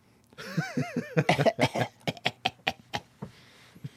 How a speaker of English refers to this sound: Let's just role play here. Okay? Let's do that. So can I start coughing?